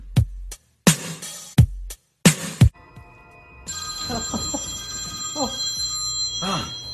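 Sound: alarm ringing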